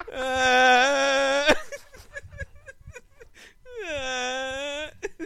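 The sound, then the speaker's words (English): A person mimics a whining, whimpering cry in two drawn-out, wavering bursts, with quick breathy vocal sounds between them, fairly loud. “And I'm just like crying from the bedroom.”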